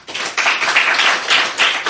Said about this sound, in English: Because when you see what's happening in this room, people on video can't imagine. They think I sit there by myself. Just so they could see on video. Can everybody just clap? Just so.